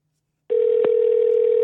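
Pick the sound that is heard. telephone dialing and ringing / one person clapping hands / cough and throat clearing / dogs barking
telephone dialing and ringing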